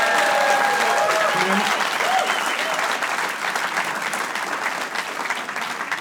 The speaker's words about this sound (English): Thank you very much. I had a joke with that, but I can't remember what the joke is. Fuck it, I'll just take the applause. Just go with the applause.